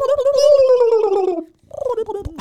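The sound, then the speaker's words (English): A voice imitates a high-pitched, Chewbacca-like growl: one long rough, warbling cry that slowly slides downward, a brief pause, then a shorter second growl. “What was that? Chewbacca. High pitched.”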